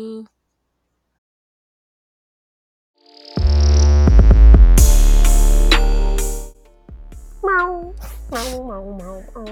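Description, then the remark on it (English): A loud, crackling burst of noise and laughter gives way to several drawn-out, wavering meows voiced by people imitating cats, one after another. “Well, thanks y'all for fucking with us again while we sit here and just talk shit and laugh and make cat noises.”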